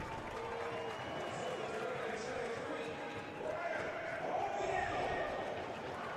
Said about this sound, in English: Brian Oviedo comes on, gets a little round of applause. Brian has been a fixture out there at left back, but 7 games in 22 days.